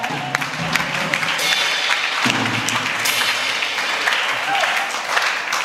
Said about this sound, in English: Can you clap to the Lord?